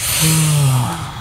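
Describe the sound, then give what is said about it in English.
A long, breathy yawn with a drawn-out low vocal tone swelling and then fading, clear, with no talking over it. “Everyone take a big yawn.”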